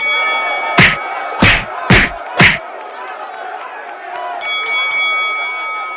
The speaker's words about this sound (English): Now ring that bell.